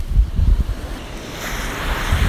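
Ocean surf washes steadily onto the shore as a person wades out and sets a small boat on the water, a continuous hiss of breaking waves that swells louder toward the end, with low wind rumble buffeting underneath and no voices.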